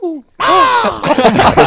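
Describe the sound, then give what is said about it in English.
A crow call is blown hard: one long, loud, buzzy caw that bends up and down in pitch, then a quick run of rougher, choppier caws. A short, faint sound comes first. “I got a crow call you could borrow.”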